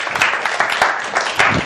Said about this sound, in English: As Pastor Mike says, a half clap is no clap, right? Oh, that's so much better.